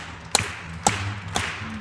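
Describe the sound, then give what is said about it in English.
Four sharp hand claps land on a steady, evenly spaced beat about half a second apart as a group claps before starting a song, with a faint low bass tone from a bassist humming underneath. “We're clapping.”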